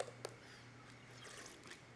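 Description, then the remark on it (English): A faint sip of water: a soft click and gulp near the start, then quiet liquid and mouth sounds over a low steady hum. “I have to take a sip of water.”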